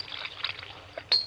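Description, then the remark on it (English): A short pour of soda into a glass: a soft hissing trickle that ends with a brighter splash near the end. No one speaks. “And now, a little soda in mine.”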